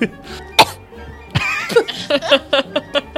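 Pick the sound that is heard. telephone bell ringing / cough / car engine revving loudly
cough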